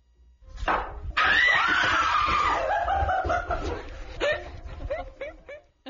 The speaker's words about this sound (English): And she just lets out this random scream as she opens the bottle of water, and all her friends domino effect a scream. So everybody's screaming all in sequence? Yes, listen.